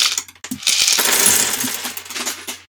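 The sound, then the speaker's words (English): Brown plastic toy bricks clatter and rattle together in a dense, steady jumble of bright, clicky knocks lasting a few seconds, fairly loud, with no one talking. “I don't have any extra pieces, just the sound of crackling brown bricks.”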